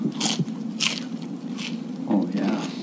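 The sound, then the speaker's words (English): Someone bites into crunchy fried chicken from Jollibee's at Ala Moana: three sharp, crackly crunches spaced a second or so apart, followed by softer chewing, all over a steady low murmur. “Jesus, this is some good fried chicken.”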